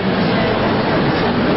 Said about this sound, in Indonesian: Pengalaman saya, Pak, kipas angin kayak begini, ini cocoknya di Ancol. Bukan di tempat ngaji, berisik.